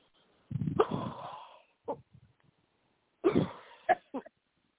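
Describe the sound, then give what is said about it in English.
Two harsh, deep coughing fits about two seconds apart, each a forceful rasping burst followed by shorter throaty coughs, fairly loud with no talking, from a woman being prayed over during a Christian deliverance prayer. “Deep breath, cough. From the gut.”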